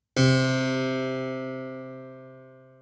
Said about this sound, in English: As the exhibits point out, the breakthrough in keyboard technology was about how to make the string ring. The harpsichord plucked the string, like this.